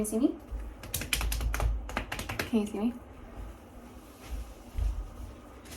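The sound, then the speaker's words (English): Crinkly rustling of a plastic keyboard cover pressed over the microphone, with bursts of sharp clicks and scratches in the first few seconds, then softer handling noise fading out. “I'm gonna use this keyboard cover really quickly, and I'm just going to put it over you.”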